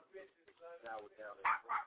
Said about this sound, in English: I got the little bar dog over here making all the noise, you know what I'm saying? The dog barking and shit.